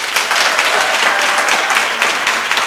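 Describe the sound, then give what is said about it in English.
Loud, sustained applause from an audience, a dense steady wash of many hands clapping at once with no break, no voices standing out above it. “You know, people are applauding.”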